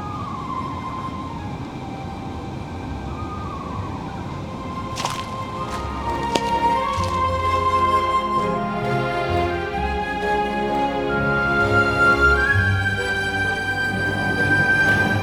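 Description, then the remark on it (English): A person whistles an imitation of an eastern screech owl's whinny call while birding, a wavering, descending mid-pitched tone, followed by a busier stretch of layered tonal sounds that rises toward the end. “We found the eastern screech owl and a couple other birds. If you're considering using this whistling technique, please look up the Sibley article called "The Proper Use of Playback in Birding."”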